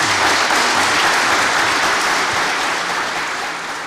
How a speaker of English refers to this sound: But let's give a great round of applause for Bud Selig.